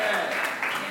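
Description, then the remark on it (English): An audience applauds, a dense, steady wash of many hands clapping at an even loudness for just under a second, with a hint of voices mixed into the noise. “Can I get an applause?”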